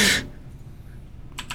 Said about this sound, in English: I heard the typing.